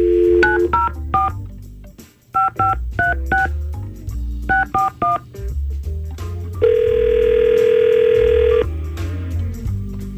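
An on-air phone call from radio station Y100 to a listener: a number is dialed in quick bursts of touch-tone beeps, three clusters of digits, followed by a long ringback tone and the start of another ring, clear with no one talking.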